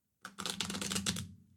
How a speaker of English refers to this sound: And now for 1 minute of shuffling. Yeah, exactly. So this is me riffle shuffling the small, small, small deck. I hope you can hear it.